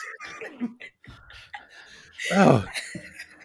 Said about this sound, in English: I just coughed so hard. That made my lungs so relaxed.